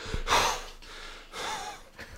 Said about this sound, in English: Now you're going to be breathing heavy into the microphone.